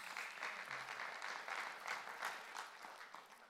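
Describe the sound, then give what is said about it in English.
A crowd claps steadily, a dense wash of many hands applauding at once, sustained at an even level for several seconds with no voices rising above it. “You can clap for that.”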